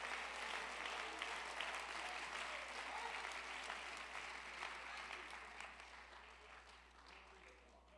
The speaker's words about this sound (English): Come on, clap your hands and love the Lord if you believe that.